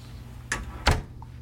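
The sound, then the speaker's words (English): A hotel room door being unlocked with a key card: two sharp clunks of the latch and handle, the second louder, then a faint, brief electronic beep, with no voices. “Leave the key card in the door to turn on the light.”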